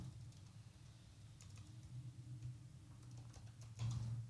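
Typing on a curved ergonomic computer keyboard: a loose, irregular run of soft clicking keystrokes, fairly quiet, over a steady low hum with no voices.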